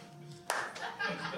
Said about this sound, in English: from behind you, you hear a slow clap.